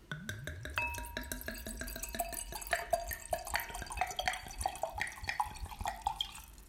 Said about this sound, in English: So, let's start pouring and get to the first sip.